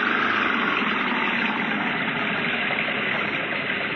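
A French car's engine, the car stuck in mud, runs loud, a steady rough droning with a rumbling low end that holds constant throughout, with no voices.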